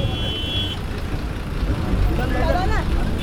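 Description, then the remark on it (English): A bus rumbles steadily through traffic, its low engine drone continuous, with a brief rising whine near the end and faint voices in the background. “I jumped onto a moving bus and escaped.”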